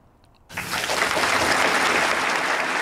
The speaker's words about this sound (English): They do eventually clap.